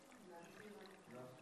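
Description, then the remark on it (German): Water is poured into a chalice in one steady, gurgling stream lasting just over a second, quiet, its pitch shifting slightly as the cup fills. “Am sechsten Tag hat er sich viel Mühe gegeben, deswegen braucht er auch ein extra Kelch hier mit Wasser.”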